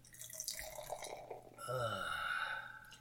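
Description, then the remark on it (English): Golden Spike Hefeweizen from Uinta Brewing of Salt Lake City pours into a glass after the top is popped, a gurgling, splashing stream that grows fuller and steadier in its second half, with the tone rising as the glass fills. No one speaks. “And the pour.”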